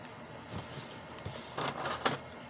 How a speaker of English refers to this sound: You reach a giant gate-like portal. Two giant stone-slash-bone golems start opening the doors.